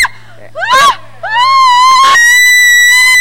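People scream loudly: two short rising shrieks, then a long, sustained high-pitched scream that holds to the end, with a faint steady hum underneath.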